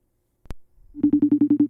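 A sharp click, then a phone line rings on an outgoing call placed in real time to a church youth leader. A loud, buzzy tone warbles in quick, even pulses for under a second, with no one talking.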